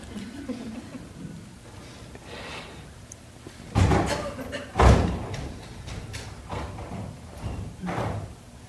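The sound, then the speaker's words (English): A door is shut with two firm thuds about a second apart, the second one heavier, over faint background murmur. “If that door is open, yeah, let's shut the door in that window for now, and we can open it later.”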